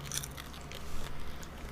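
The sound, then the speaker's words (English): Chewing of a peanut-M&M-sized candy with a crisp rainbow shell, a chocolate layer and a dense, chewy brownie centre, with soft wet squelches and a few faint crunchy bites repeating irregularly, quiet with no talking. “I tried to, chew straight through the middle. Could not be done.”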